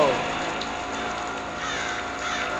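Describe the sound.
A crow caws amid a dense, steady wash of outdoor noise, moderately loud, with a voice faintly mixed into the background.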